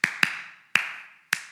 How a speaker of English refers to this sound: You know the game I'm playing where you're trying to get the person to guess the song and you clap the beat. So let's say happy birthday.